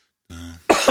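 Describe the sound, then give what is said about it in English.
A single harsh cough, not a COVID cough, from irritation at the back of the throat, preceded by a brief throaty rasp, loud and abrupt with no talking around it. “I've now developed a cough out of nowhere”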